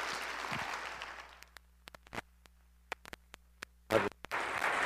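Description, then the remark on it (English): An audience applauds to welcome a visiting minister, a dense wash of clapping that thins out into scattered single claps, then a brief flurry before the applause swells again at the end. “Would you take your Bibles out, your sermon notes on the back of your bulletin, and while you're doing that, still clap and welcome Steve Sampson as he comes to minister.”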